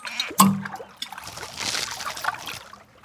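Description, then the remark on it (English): Bubbling, gurgling water fills a short stretch, with a sharp plop near the start followed by a steady churn of burbling and trickling that fades slightly toward the end. “The sound of bubbles and water filled the air as King Carl, the King of Atlantis, and his dolphin sidekick Bubbles came back from their latest mission.”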